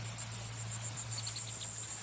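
Rapid, steady pulses of high, buzzy cicada song repeat without pause at a pristine marsh on Virginia's coast, with a fainter chirping layer joining partway through, over a low constant hum and no voices.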